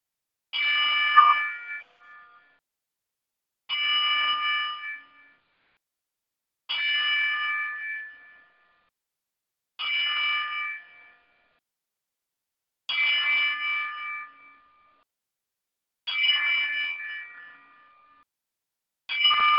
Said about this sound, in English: I think tonight, and I'm going to do this here, right here and now, a 10-bell salute.